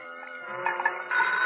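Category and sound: signal or alarm, telephone ringing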